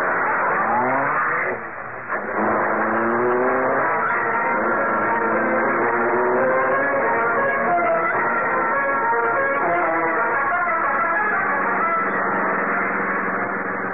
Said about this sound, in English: Rick Reed pressed a button. The great car roared into life. A section of the wall in front raised automatically, then closed as the gleaming Black Beauty sped into the darkness.